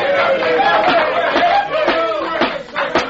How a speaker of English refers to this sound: I sincerely hope that applause was not meant for me.